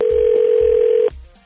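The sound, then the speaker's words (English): A telephone ringing tone as hosts place a morning call to a listener: one steady, fairly loud electronic hum held for about a second before cutting off abruptly, with soft low thumps pulsing underneath. “We are calling Megan this morning because she messaged us about Eddie, and he's just not responding anymore to her texts after they went out on a what she thought was a great first date.”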